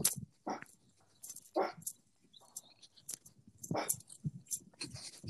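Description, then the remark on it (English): A pet dog lets out a few sharp, separate barks spaced a second or two apart, fairly quiet, with faint scattered noises in between. “Mine's barking a bit now.”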